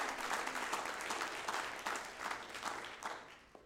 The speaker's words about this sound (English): Can you clap your hands unto the Lord, all you people?